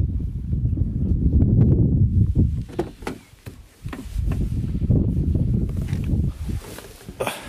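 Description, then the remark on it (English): Strong wind buffets the microphone outdoors in a loud, rumbling roar that gusts and briefly eases midway, with scattered clicks and knocks over it. “It's getting very windy now.”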